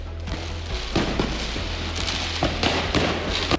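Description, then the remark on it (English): Repeated sharp firework bangs and crackles burst out at irregular intervals over a constant low rumble, a chaotic outdoor street scene with no clear voices. The fireworks are shot by angry protesters during violent night protests near Paris, France. “Angry protesters also shot fireworks at some of what you're hearing and threw stones at police.”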